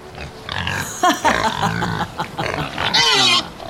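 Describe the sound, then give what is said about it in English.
Several pigs oink and grunt in a continuous, busy jumble, with a few higher squeals rising near the end; the animals sound fairly loud. “Cersei turned Odysseus's crew into pigs.”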